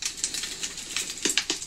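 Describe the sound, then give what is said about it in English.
An hour-long fireplace crackling sound played by the Google Assistant, with sharp irregular pops and snaps over a steady soft hiss. A few louder cracks stand out near the end, and no one speaks. “That's an hour-long fire crackle.”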